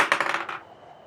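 Dice rolled for a perception check clatter across a hard surface in a quick burst of six or seven bright clicks, tumbling for about half a second before settling into silence.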